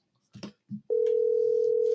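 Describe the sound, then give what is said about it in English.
A few soft handling thumps, then a loud telephone dial tone starts and holds as one steady, unbroken hum until the end, as a phone call is placed. “Let's get them on the phone.”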